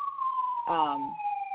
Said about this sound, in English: They're coming to get me, people. If you guys can hear the sirens, I'm sorry.